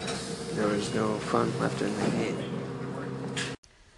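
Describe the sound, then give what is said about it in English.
Steady, droning rumble inside a moving train, with indistinct voices murmuring under the noise; the sound cuts off abruptly just before the end. “It was a little bit hard to hear you over the ambient noise of the train or bus, I think, that you were riding in.”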